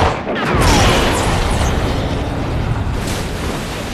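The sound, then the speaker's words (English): A rifle shot hits an air tank, setting off a loud explosion that bursts out suddenly and rolls into a long, roaring rumble, slowly fading over several seconds with no voices present. “and he has to shoot the tank?”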